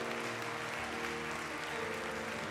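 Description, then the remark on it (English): Sustained applause from a large audience, a dense, steady wash of many hands clapping at once with no pauses, loud and continuous throughout. “Come on, keep clapping.”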